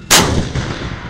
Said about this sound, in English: it's now Germany's main battle tank, the Leopard 2, that's making its presence known. On Britain's Sennelager Ranges, a German Leopard 2 unleashes its firepower.